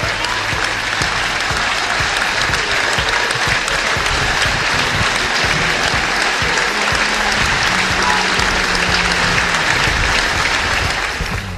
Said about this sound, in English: Well loved by everybody who knew him, and hopefully in the next 4 minutes we're going to have a minute's applause here at the Mazuma to hopefully honour his memory.